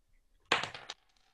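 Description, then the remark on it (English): Stress dice clatter and tumble across a hard table during a tabletop roleplaying game, a quick burst of rattling clicks lasting under half a second before settling, fairly loud with no voices. “You get to roll your stress dice as well.”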